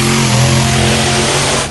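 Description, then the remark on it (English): A big monster truck engine roars and revs, a loud, steady, throaty rumble that holds for under two seconds with no one talking. “I have the pleasure right now of talking with the Monster Truck Bigfoot.”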